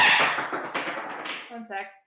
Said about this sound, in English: Sounds like their dice did not want to be part of this. that was alarming. Sorry, my metal sounds dice like they yeeted themselves off the table. The metal dice vaulted itself across the pit.